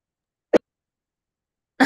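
A single sharp cough breaks the silence, followed after a pause of over a second by a second, rougher cough. Both are close and fairly loud, with no talking.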